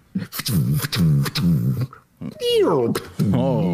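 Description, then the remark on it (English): A voice imitates a bombardment: loud, rough, growling booms in quick succession, then a falling whistle-like swoop followed by more vocal blasts. “That's the bombardment sounds.”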